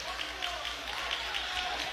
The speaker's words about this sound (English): Hear the crowd. It's not in agreement with that call.